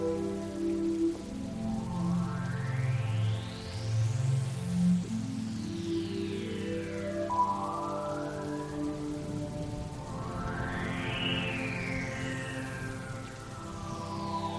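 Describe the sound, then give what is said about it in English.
Steady rain hisses throughout an outdoor concert, mixed with loud live music as the band leader sings and shreds: sustained guitar tones and sweeping rising and falling pitch slides over a low, driving bass. “This is our purple band leader, singing and shredding and holding revival in the rain.”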